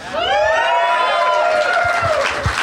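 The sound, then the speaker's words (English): An audience cheers loudly and steadily for a few seconds at the announced game name, Cable Billing, with high, wavering whoops riding over the crowd noise and a few soft thumps near the end. “You don't have to cheer for the game names, but I like it.”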